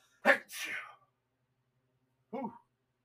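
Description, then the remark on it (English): A single loud sneeze with a sharp intake and explosive burst, then a short pause before a brief voiced exclamation from the same person. “For those of you in your office, home, or car that just said, bless you”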